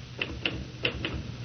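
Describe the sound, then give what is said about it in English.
Four crisp, irregularly spaced typewriter key strikes clack at moderate volume over a faint background hum as a woman types in an office. No one speaks. “Listen, will you knock it off with the typing and look at me for Pete's sake?”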